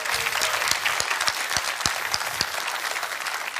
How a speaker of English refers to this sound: Can we give the Lord another clap of hand?